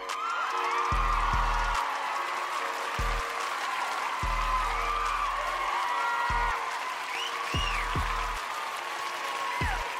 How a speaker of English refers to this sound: That's way too much. That is way too much credit. No, they should not be applauding that much for that shit.